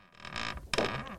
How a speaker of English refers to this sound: This is what we did. We could have had this recorded probably by like 11:30. But instead, we fucked around and took recordings of a chair sound.